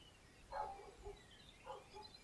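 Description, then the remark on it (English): Two short, muffled barks from a dog named Bella, about a second apart, sounding faint against a quiet background with no talking. “Thank you for joining me and Bella, who's barking.”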